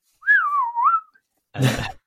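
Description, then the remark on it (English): A person whistles a single wavering, up-and-down tone, imitating a dolphin's signature whistle, then a brief breathy vocal burst follows after a short pause. “Yeah, they have signature whistles that are distinct to particular dolphins. So they might go...”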